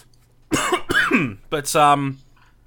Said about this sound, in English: I wish that was a comedic cough, but that was actually a genuine cough.